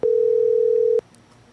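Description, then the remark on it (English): A loud, steady telephone dial tone of an outgoing call to privateer Kyle Chisholm hums for about a second, then cuts off abruptly into near silence. No voices are heard. “Let's get Kyle on the phone.”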